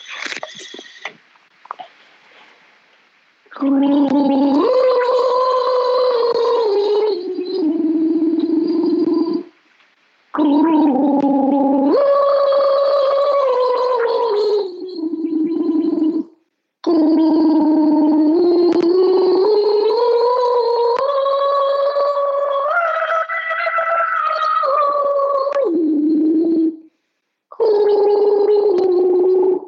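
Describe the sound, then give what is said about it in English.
Someone gargles water in long, bubbling bursts with a rising and falling voiced tone, broken by brief pauses for breath; loud and continuous, with no talking. “I've got too much water.”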